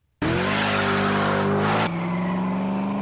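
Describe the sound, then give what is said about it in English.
An American V8 muscle car engine bursts into a loud roar, holds a high rev for over a second, then drops abruptly to a steady, throaty rumble. No one speaks. “That's the unmistakable sound of American V8 muscle that revs the hearts of the young and old alike.”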